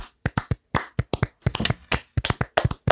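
A small group claps to close out a bracket after crowning Mike Wazowski from Monsters, Inc. the funniest Pixar character: a quick, uneven burst of about twenty sharp, crisp claps, loosely overlapping, with no talking.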